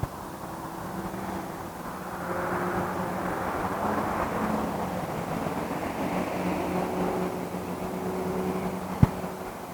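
A big truck rumbles past with a steady, droning engine noise that swells slightly midway, fairly loud and continuous throughout, with a brief sharp click near the end.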